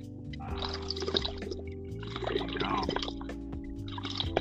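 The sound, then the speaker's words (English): Steady water bubbling through a dab rig as someone takes a dab, a continuous gurgling churn that rises and falls in bursts over a few seconds, with a low hum underneath. “Go ahead and dab it up.”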